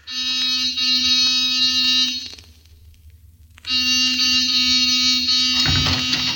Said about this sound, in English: Give the buzzer a punch.